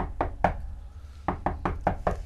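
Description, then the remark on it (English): Knocking on a door: two quick raps, a short pause, then a faster run of five sharp knocks, with no voices over them. “Who's that? Somebody who's there? I don't hear anything. Is that my door? Is that your door?”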